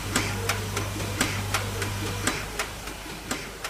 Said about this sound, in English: Notice the rhythmic clicking sound in the background? That's the rate at which the rolls of films are being made, one click per roll. But suddenly the clicks stopped.